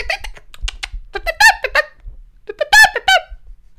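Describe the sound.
A voice mimics the repetitive call of a black bird in the backyard: short clicky sounds lead into two bursts of shrill, squeaky, warbling notes, repeated in quick succession and fairly loud.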